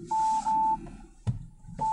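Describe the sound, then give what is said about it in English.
Car parking sensor warning beeps as a car reverses off a driveway, warning of a massive tree at the drive's exit: a long, steady electronic tone, a pause broken by a soft low thump, then the tone starting up again, clear with no talking. “That's the car warning me about the tree.”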